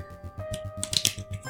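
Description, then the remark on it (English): A deck of cards being shuffled, a quick run of crisp, papery clicks and flutters with a brief louder burst in the middle, no voices. “Or, let me shuffle this deck.”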